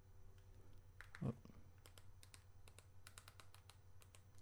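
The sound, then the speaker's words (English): Quiet, steady typing on a new computer keyboard, a run of soft key taps in irregular bursts over a low background hum, with one slightly louder thump near the start. “I'm using a new keyboard because the other one's too clicky.”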